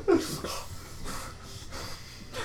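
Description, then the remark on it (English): A voice imitates heavy panting: about four or five breathy, rhythmic huffs in quick succession, moderately loud, with no words spoken. “All sweaty and panting.”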